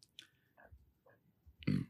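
burp

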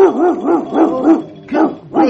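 big dog barking

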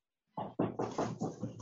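knocking

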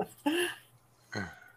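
burp

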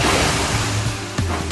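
stormy sea waves

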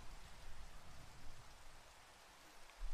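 rain falling

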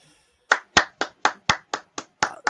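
hand clapping

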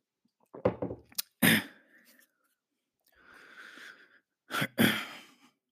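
sipping tea

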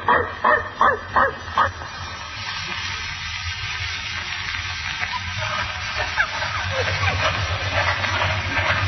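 dog barking

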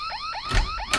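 car alarm going off

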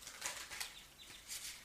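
tarot cards being shuffled

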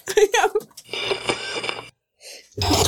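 sneeze

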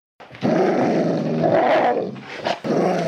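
dog growling

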